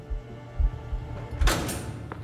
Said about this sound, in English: His entourage of guards took him through one last secure door. Stephen steeled himself as it swung open.